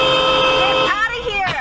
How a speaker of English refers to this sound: What was that? Was that a train or a car? That was him holding his horn down.